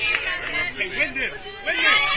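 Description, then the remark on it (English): A steady murmur of crowd chatter at a softball game on a Saturday afternoon, many overlapping voices forming a moderate babble with no single voice standing out. “Another great crowd on hand this Saturday afternoon.”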